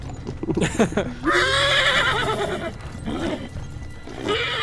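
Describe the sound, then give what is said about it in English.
Cart horses whinny loudly as they bolt into the woods: one long, wavering neigh followed by shorter ones, with a quick clatter of clip-clopping hooves at the start. “Well, they flip the cart, and it sort of shatters to the ground, and the horses take off in different directions into the woods.”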